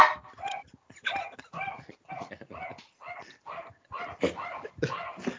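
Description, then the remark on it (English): A dog barks over and over in a quick, steady string of sharp yaps, moderately loud, with no one talking. “I think your dog was trying to make a point at the outrageous comment you just made.”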